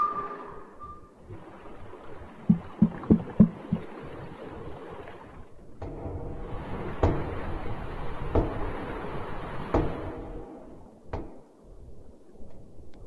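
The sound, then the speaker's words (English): Underwater banging from the depths of the ocean, picked up by sonar: a quick cluster of sharp knocks, then single bangs at irregular intervals, ringing through a steady, hollow rushing noise with no voices. “And so we have been hearing that there's been banging from the depths of the ocean. We actually have a little bit of audio, real audio, of what that sounds like.”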